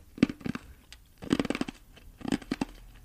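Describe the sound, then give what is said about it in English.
Three bursts of wet, crackling crunches as a person chews ice cubes in his mouth for ASMR, each a quick cluster of sharp snaps with soft pauses between, with a crisp texture. “So he's got ice cubes in his mouth and he's going to do something, aren't you?”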